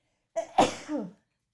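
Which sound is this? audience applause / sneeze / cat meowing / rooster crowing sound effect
sneeze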